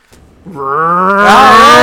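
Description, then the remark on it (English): A voice imitates a car engine starting: a loud, buzzy, growling tone that revs upward in pitch for over a second, turning rougher and breathier at the end. “Yeah, we need to figure out how to get this car going.”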